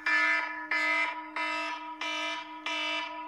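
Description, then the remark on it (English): A phone alarm going off inside a pocket blares in a steady repeating pattern of five loud, harmonic electronic beeps, each about two-thirds of a second long with tiny gaps, slightly muffled, with no talking. “It's in my pocket. Go off. Oh, my alarm go off.”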